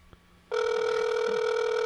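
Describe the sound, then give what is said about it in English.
After a brief quiet moment, an outgoing phone call's ringing tone starts and holds steady: a loud, continuous buzzy tone with layered harmonics that does not break, with no voices. “Let's see if we get an answer.”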